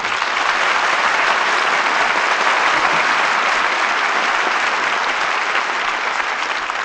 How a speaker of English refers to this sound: Well, I think that applause says it all.